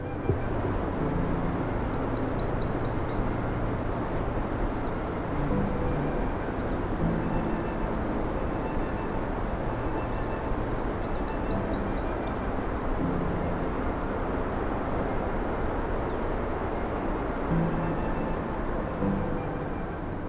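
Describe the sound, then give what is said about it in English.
Songbirds, including black-and-white warblers, red-winged blackbirds and blue jays, sing high, repeated trilling phrases every few seconds, later joined by scattered chirps, along a road skirting the edge of national park lands, over a constant low rumble of road or wind noise. “Along the way, we'll hear some black and white warblers, red-winged blackbirds, blue jays, and more.”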